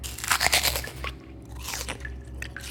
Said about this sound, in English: Day 54. It was really quite a lovely day until the chewing began again.